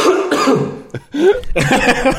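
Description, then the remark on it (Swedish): A loud burst of harsh coughing and wet throat clearing from a hungover person, several hacks in a row with a brief pause in the middle, no talking. “Vi skulle kunna köra så här som GV, så här, 10 minuter hostningar.”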